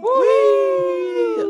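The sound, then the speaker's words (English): A human voice imitates a wolf howl: one sustained, wavering tone that rises at the start, holds steady for over a second, then breaks off. “That sounded like a wolves.”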